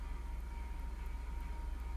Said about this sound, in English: Car parking with bad radio taste. Wait, it's a song? I think so. That sounds like... Yeah, it was a stereo.